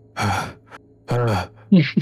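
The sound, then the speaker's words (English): Heavy, voiced breathing performed by a voice: two long, drawn-out huffing breaths followed by two short, sharp gasps, fairly loud with no other sounds. “He'll be breathing heavily.”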